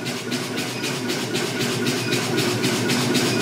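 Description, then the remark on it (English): A ball peen hammer strikes a steel bar on an anvil horn, cleaning up the area where a taper was started, in a quick, steady rhythm, about a dozen bright metallic blows with a sustained ringing tone between them, and no voices. “That's been hitting the edge of my hammer dies a little bit there, so I'm going to clean that up on the horn with a ball peen.”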